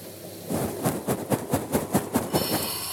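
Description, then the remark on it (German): A recorder pushed into freshly ground malt picks up a dry, gritty rustling that pulses in a quick, steady rhythm, about ten crunchy surges over a constant hiss, with no voices. “Wenn man ein Aufnahmegerät in fertig gemahlene Malz reinsteckt, klingt das übrigens ungefähr so.”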